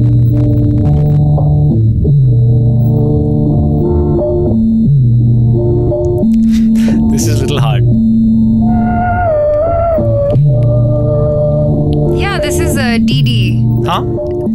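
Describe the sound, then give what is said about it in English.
The Doordarshan TV channel's morning signature tune plays loud: a slow instrumental melody of sustained, reedy tones stepping between notes, with brighter flourishes near the end and no talking. “Doordarshan in the morning. The signature tune.”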